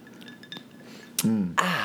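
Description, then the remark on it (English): Faint glass clinks in quiet, then a short noisy slurp of a sip of crisp white wine from a glass, followed by a brief voiced murmur and a breathy exhale. “So, basically, I have to take a sip of this.”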